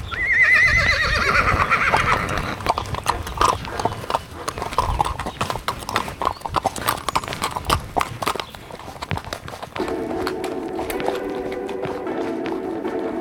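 A horse's hooves clip-clop in a steady rhythm throughout during a horse ride, with a high whinny at the very start and some rustling and movement noise around the hoofbeats.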